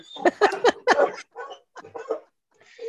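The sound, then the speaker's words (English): A dog named Luna vocalizes: a quick run of four or five sharp, yelping barks, then several softer, shorter whimpering sounds with brief pauses between them. “And we were talking about this, just like, and Luna wants to chime in now. Hey, come here, dog.”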